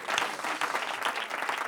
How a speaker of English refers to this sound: Clap your hands unto the Lord if you're thankful for his spirit. Amen. If you're thankful for his spirit, his power, his love, his mercy.